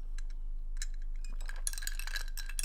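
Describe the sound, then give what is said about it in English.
Someone takes a sip of coffee: a few soft clinks of a mug or cup, then a brighter burst of clattering and rustling toward the end. It's quiet, with no talking. “I'm gonna take a sip of coffee.”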